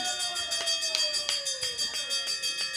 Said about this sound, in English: All right, that bell was long as shit.